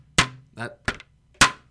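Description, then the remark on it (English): A football helmet collision sound effect: three sharp, hard knocks spaced unevenly over a second and a half, loud, with a short voiced grunt between the first two impacts. “This is the helmets that we thought about, but we're not quite sure.”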